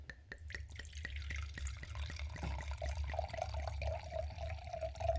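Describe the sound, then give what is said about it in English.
Chilled red wine (Glau Glau, from Las Jarras wines in California) poured into a glass, starting with a few quick glugs and settling into a steady stream whose pitch rises as the glass fills. No one speaks. “I'm just going to pour this for myself.”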